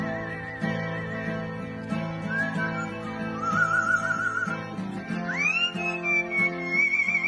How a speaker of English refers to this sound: And finally, speaking of guitars, here's a guy strumming a guitar and being completely upstaged by his singing bird.